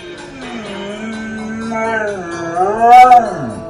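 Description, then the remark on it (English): A dog, a fan of a USA Network show, vocalizes in one drawn-out, wavering howl that slides up and down in pitch, fairly loud, building toward the end with no talking over it. “To cancel that out with some good vibes, this has been going around Twitter, and we're all looking for marathons, things to binge, and we never more needed to flip on the USA Network and get this show, but this dog is a special kind of fan.”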